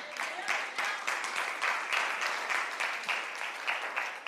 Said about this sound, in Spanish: Si ese aplauso era para el Señor, está demasiado de una vez. Fatal. Aplaude al Señor con alegría de corazón.